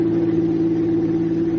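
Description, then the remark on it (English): A small coupe's engine hums steadily and fairly loudly as it drives along an empty city street lined with high stone buildings, its low, even drone holding without any change in pitch. No voices are present. “In a nearby city, a small coupe was driving along a street.”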